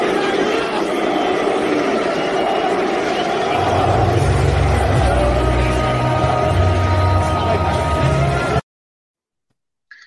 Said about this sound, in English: I tell you what, I can't remember, you know, the amount of times that the fans have been booing inside the Tottenham Hotspur Stadium. This is what it was like at half-time.